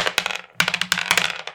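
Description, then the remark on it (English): Dice rolled to decide who goes first clatter and rattle across a hard tabletop in two quick bursts of sharp, bright clicks and bounces, fairly loud, with no voices. “Let's roll to see roll who goes first.”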